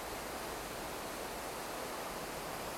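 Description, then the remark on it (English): Flowing river water rushes in a steady, continuous wash of hiss with no pauses or distinct events, even in loudness, with no voices. “Follow my voice and follow the sounds of the river, the sounds of the cars above us, and just flow.”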